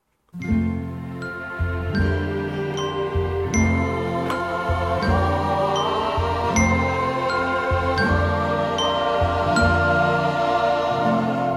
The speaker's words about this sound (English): I like to end the next couple of podcasts with something positive, with, you know, a nice Christmas song